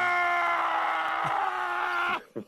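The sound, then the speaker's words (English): A man lets out a loud, sustained scream lasting about two seconds, held on a strained, steady pitch, then breaks off into a short gasp-like vocal burst. “If I was Howie Roseman after the game Sunday, I would yell and scream.”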